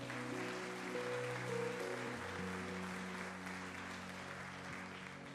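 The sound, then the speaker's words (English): In the morning, an audience gives a woman who serves in the church one more round of applause for several seconds, a dense wash of clapping over a sustained organ-like tone holding low notes underneath. “So give her one more hand clap this morning.”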